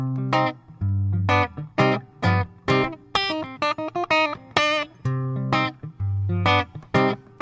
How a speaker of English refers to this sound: But first, I would like to kick to a little music.